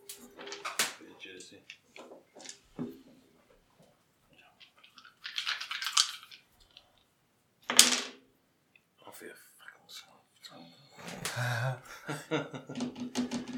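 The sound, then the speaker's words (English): Wooden dice clatter and tumble across a tabletop in several short, sharp bursts of knocks, with muffled voices and quiet movement between the rolls. “Are these your dodgy weighted wooden dice?”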